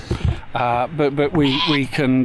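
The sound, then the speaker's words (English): A goat kept for goat walking on a community croft bleats loudly, a run of quavering, wavering cries in quick succession with brief gaps, after a short rustle of background noise. “crofting to provide social support, mental health and educational care services for their local community, which is where the goats come in.”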